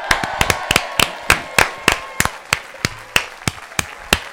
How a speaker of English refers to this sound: I'm still clapping. You are still clapping. I'm clapping. Let's keep clapping.